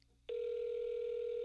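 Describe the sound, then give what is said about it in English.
After a moment of near silence, a steady electronic phone ringback tone starts and holds unbroken at an even, fairly loud level, with no talking. “One more ring.”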